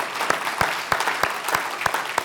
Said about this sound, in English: Over the past 14 years, we have seen at least 977 people put their faith and trust in Jesus as their Lord and Savior. That would be a great time to clap.